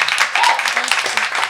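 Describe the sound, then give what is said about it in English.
A brief burst of audience applause, a steady, dense crackle of many hands clapping throughout, with faint voices mixed in underneath. “you should clap”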